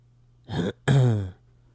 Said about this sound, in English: That wasn't a cough. It was just a little... I was just clearing my throat, man.